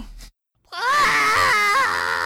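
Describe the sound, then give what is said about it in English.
An adult voice imitates a child screaming and crying: after a short burst and a brief pause, one long, loud, wavering wail runs to the end. “I'll start screaming because you didn't let me hurt myself.”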